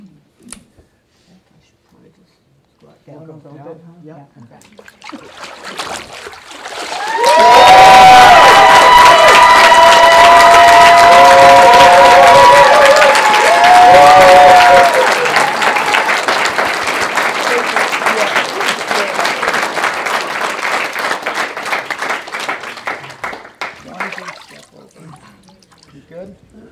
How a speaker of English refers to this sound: You guys, how about one more round of applause for everybody?